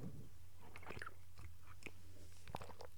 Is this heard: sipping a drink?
yes